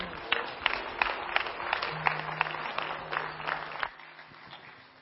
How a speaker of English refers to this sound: Holy Spirit, seal today what you, Jesus, have done in our life as we all give God a great big hand clap of praise. Amen.